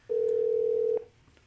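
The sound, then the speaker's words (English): A single steady telephone ringback tone, a flat electronic hum lasting just under a second before cutting off, heard clearly with no voices, while a live radio program calls a guest back. “We're a little disappointed that you don't have like a classical song as your ringback tone.”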